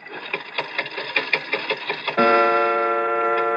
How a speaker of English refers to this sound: But look at the clock. I open the glass face like this. I push the hand forward like this, and...